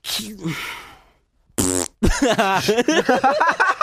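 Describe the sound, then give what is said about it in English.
A person blows a wet, buzzy raspberry with their mouth, imitating a fart, in a short burst. A brief pause follows, then people start talking and laughing. “I like it when you do funny fart sounds with your mouth.”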